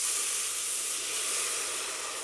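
Water sizzles and hisses as it is added to deglaze a hot pan holding juices, oil and seasonings from cooking pork chops, a steady, bright, crackling rush of steam that holds at a constant loudness throughout, with no voices.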